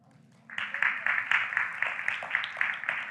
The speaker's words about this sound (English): That was not a resounding applause.